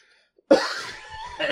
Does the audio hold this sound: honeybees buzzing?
no